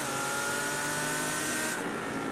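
Race car engines roar steadily and loudly throughout, a dense mechanical drone with a sustained high-pitched whine, as several cars go into the hairpin on a Grand Prix circuit.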